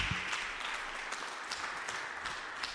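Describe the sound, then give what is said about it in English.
A church audience claps and applauds steadily, a dense wash of many hands at moderate loudness, sustained without pause throughout, with no voices standing out. “Put your hands together for the Lord, please.”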